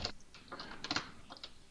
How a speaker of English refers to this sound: Go ahead and just dice these up, too. Now, these probably don't need too much. They're kind of in small little chunks. They're kind of still a little damp.